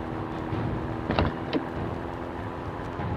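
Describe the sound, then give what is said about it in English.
A steady, continuous rumble of a moving car, with road and engine noise droning throughout and two brief sharp knocks near the middle. No one speaks. “I can't believe you shot a Tommy on top of a moving car.”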